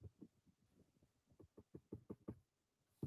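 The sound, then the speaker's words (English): Fingers tap repeatedly on a touchscreen that had been blank for 12 hours, trying to get it to wake up: a dozen or so soft, dull taps in an uneven rhythm that speeds up briefly, fairly quiet, with no talking. “And so we're just tapping on it to try and get it to wake up.”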